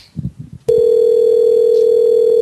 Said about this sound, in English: call this guy about a washer and dryer. It's already ringing.